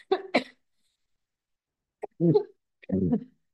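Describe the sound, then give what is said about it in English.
A person with a lingering cough coughs: two quick coughs, a pause of about a second and a half, then two heavier, throaty coughs, with no talking. “And you're going to have to excuse me, because I'm going to have to cough again.”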